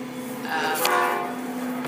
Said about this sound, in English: pause for a minute. We'll let the train go by. That's right. The good old Chicago Metra.